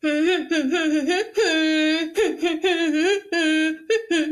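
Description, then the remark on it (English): A single voice hums a catchy pop melody in a string of sustained, mid-pitched notes, broken by short pauses between phrases, fairly loud and with no other sounds. “Oh my God, I'm very good at humming.”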